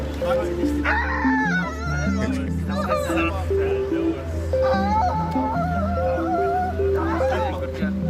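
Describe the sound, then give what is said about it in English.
A human voice screeches out loud, sweeping cries imitating a crowing rooster, repeated several times over a steady, droning musical backing. “That sounds like a rooster in the morning.”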